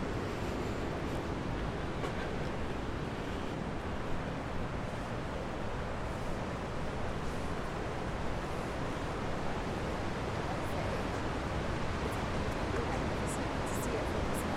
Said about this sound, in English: And being able to walk back here really shows you the purpose and the reason why these mill buildings were built on either side of the river, because they were harnessing the power of this rushing water.